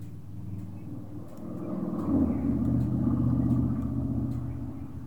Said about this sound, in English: This is so strange. I'm hearing live traffic right now.